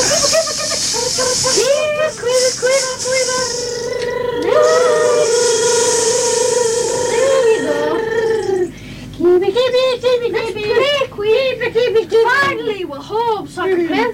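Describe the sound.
A rain stick pours out a steady, bright hiss for about eight seconds, with sustained vocal sounds over it, then gives way to wavering, sing-song voice sounds.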